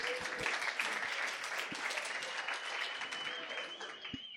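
A crowd claps steadily for two people coming to the stage, a dense, even patter of many hands that holds at a fairly loud level for several seconds with no break and no talking.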